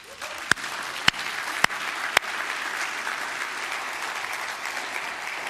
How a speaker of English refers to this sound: I think that's worth clapping for.